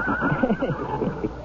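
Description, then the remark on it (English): A still-growing deep chestnut horse with a black mane, 17 hands at the withers and weighing 1,200 pounds, whinnies, a single drawn-out, wavering neigh lasting over a second, moderately loud and heard on its own without talking. “He's the biggest horse I've ever seen.”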